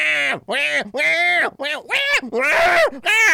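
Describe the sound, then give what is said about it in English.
A person imitates cats yowling at night, drawing out a string of wavering, rising and falling wails with short breaks between them, loud and strained, some growling and rough toward the end. “I used to have like a colony of feral cats who lived behind my house, and they would get into that shit all the time.”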